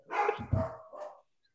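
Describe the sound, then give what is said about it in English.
A short burst of dog barking, a couple of sharp barks with some yipping overtones, fading out quickly into silence. “What are they barking at?”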